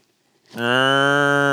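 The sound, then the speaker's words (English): After a brief hush, a voice lets out a loud, sustained imitation of a cow's moo, a low steady drone held without wavering or breaking. “He just kind of moos every once in a while.”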